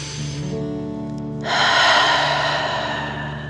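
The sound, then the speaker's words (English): A slow, steady deep inhale through the nose, filling the belly, followed by a louder, breathy exhale that lingers for a couple of seconds, clear with no talking, as part of a breathing exercise. “Remember to breathe in through your nose, filling up your belly, and then out, pretending you are breathing fire. Deep breath in and out.”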